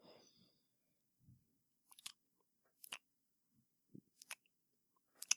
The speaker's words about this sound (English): Is that the sound of you clicking? That's me just waiting. I'm just waiting for the fucking all the updates.